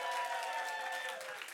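A church audience applauds returning guests, a dense wash of many hands clapping at once, steady and loud, easing off slightly toward the end.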